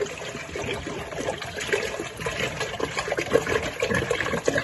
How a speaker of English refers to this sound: 4 quarts in a gallon. We're gonna pour in our gallon of distilled water,